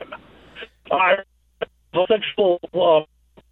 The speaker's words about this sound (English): We lost you, man. Your phone went all garbly gook.